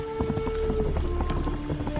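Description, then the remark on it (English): A horse gallops through puddles in a video game, its hooves striking in a quick steady rhythm with wet splashes on each beat, fairly loud over a sustained tonal background. “And even like when the horse is galloping in puddles, there's water splashing.”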